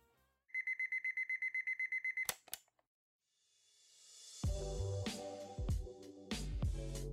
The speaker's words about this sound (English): It's 6:30 a.m. on a Monday. Manny's alarm went off